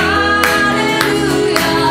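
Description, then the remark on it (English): Three steady hand claps land about half a second apart over a sung hallelujah worship song, mixed into the full, continuous song rather than standing out alone. “Clap your hands in your home.”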